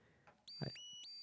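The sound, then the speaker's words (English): An electronic alarm sound effect: a high, buzzy tone that swoops up and repeats in quick pulses, loud and steady, with a brief low thump just after it starts. “I wanted an alarm sound because I want to...”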